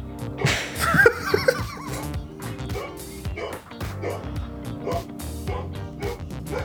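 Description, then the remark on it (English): A female dog barks and yips in a rapid, excited string of sharp calls, loud, with some human laughter and muffled voices mixed in. “Stupid idiot dog.”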